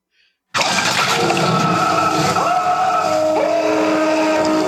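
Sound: movie scream sound effect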